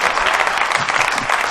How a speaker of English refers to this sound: Thank you. I like that hand clap.